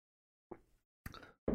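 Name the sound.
sipping tea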